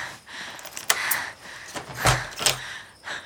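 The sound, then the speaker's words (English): A man unlocks and opens a door: a few sharp metallic clicks and clunks from the lock and latch, then a heavier knock as the door swings, with no talking. “unlocked the door and opened it.”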